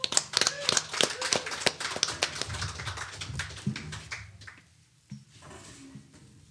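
A burst of audience applause: sharp, crisp hand claps patter quickly for about four seconds, then thin out and fade, leaving a faint murmur of voices.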